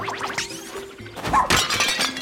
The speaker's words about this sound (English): we smashed through some clay pots using Ochi, and that cleared away